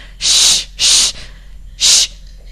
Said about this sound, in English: She's going to pass out from her hyperventilating.